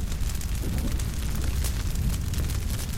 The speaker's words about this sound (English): Or there'll be, like, a crackling as a couple trees explode or whatever. I mean, there's clearly a fire somewhere. Oh, it's like an actual... It's an actual fire.